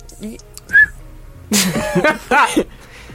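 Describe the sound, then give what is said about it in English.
A short, bright whistle blown through the lips in place of a real whistle rings out once, followed by a louder burst of wavering, whistle-like vocal sounds that rise and fall before cutting off. “Yeah, I about to say, what happened to the whistle?”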